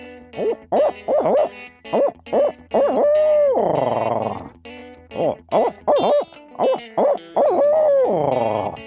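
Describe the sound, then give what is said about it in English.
A person's voice imitates a barred owl, giving rhythmic series of loud hooting notes that end in drawn-out, descending caterwauling calls, repeated twice with short pauses between phrases. “All right, this will be by Bard Owl.”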